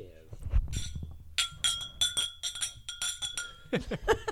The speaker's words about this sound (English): That was about 16 glasses clinking. Yeah. Cheers.